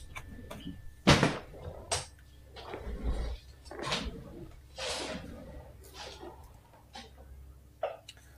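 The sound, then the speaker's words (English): Plastic clicks and scraping rubs as a lightsaber blade is test-fitted into its newly dried hilt, with one sharp snap early on followed by several softer, irregular sliding bursts. “I actually need to see, now that this is all dry, to see if the blade will actually fit in it.”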